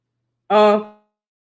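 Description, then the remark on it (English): A single short, loud sneeze bursts out, a voiced 'choo'-like blast that fades quickly into silence. “Excuse me, I had to sneeze.”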